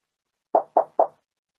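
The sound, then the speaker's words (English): Three quick, evenly spaced, solid knocks on a door, with nothing else heard around them. “I'm ignoring the door.”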